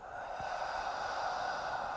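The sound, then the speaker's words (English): A steady, airy exhale blown out through the mouth during a breathing exercise, with the shoulders dropping as the air is released, lasting about two seconds at an even, moderate level with a soft hiss and no voices. “I am breathing out.”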